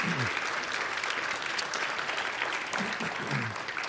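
audience applause

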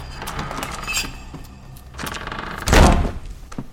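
heavy door thudding shut

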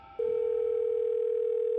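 phone call ringing tone

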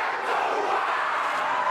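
protest crowd shouting

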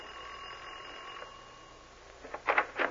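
doorbell ringing

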